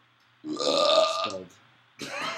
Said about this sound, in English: Almost threw up. You know what was bad about that? I'm sorry to interrupt, but that was black coffee and Jet's pizza burp. Really acidic.